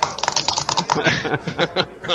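Rapid typing on a computer keyboard as someone looks something up, a steady flurry of sharp key clicks with a few heavier taps, heard on its own without talking.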